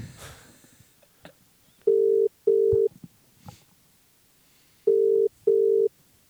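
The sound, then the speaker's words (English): A phone ringback tone purrs in steady paired bursts, two short rings, a pause, then two more, clear with no answer and faint background rustle between. “Should we call on Bianca's phone?”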